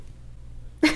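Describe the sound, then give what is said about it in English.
A single sharp sneeze bursts out near the end after near silence, loud with a breathy, noisy spray of sound. “Bless you.”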